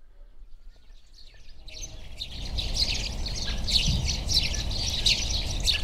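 A busy chorus of small garden birds chirping and twittering together, building from quiet to a steady, lively tangle of overlapping calls against a low outdoor rumble.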